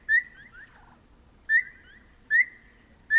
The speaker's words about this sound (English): One of the sweetest sounds of the desert is the lovely whistle of the Phainopepla, a member of the silky flycatcher family.